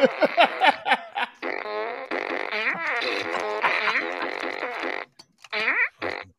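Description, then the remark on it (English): A rapid string of loud synthetic fart noises played from a phone app, several short bursts at the start followed by long wavering, sputtering blasts and a final couple of quick toots. “There's an app called iFart.”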